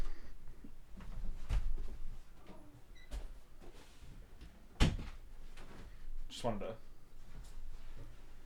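Rustling and handling noises lead to a door being shut, with a few dull knocks and one sharp clack midway, followed by a short squeaky scrape.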